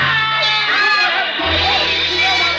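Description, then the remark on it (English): A crowd shouts and yells wildly all at once, a loud, continuous wall of overlapping voices that stays intense throughout, with no clear words standing out. “The wild shouts from the crowd sent me running back.”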